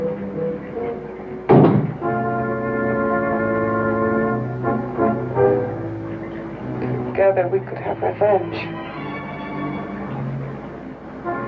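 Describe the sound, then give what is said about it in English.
A single heavy, muffled knock made by a creature inside a closet, followed by a low sustained droning tone with wavering, voice-like warbles layered over it. “Assistant Kurt overhears their conversation, or at least the creature's knocking.”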